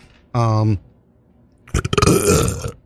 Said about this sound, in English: That was not a very... very bassy burp. Pardon me.